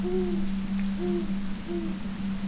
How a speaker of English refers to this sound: felt herself out in the wind and rain, with no sense of direction.